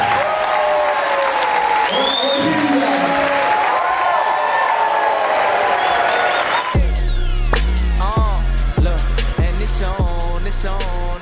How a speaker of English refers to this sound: Hey guys, can you get one round of applause for these panelists?